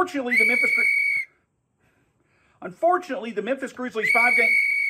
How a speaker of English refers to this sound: It's kind of hard to find a rhythm when the whistle is constantly blowing.